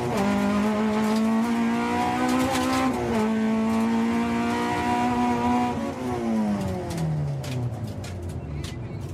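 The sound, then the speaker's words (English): A loud, steady rally car engine drones and then drops in pitch, while scattered sharp ticks and rattles of gravel strike the underside of the car throughout, an average family car with all its seats and soundproofing ripped out to save weight. No one is talking. “You can hear every bit of gravel hitting the underside of the car.”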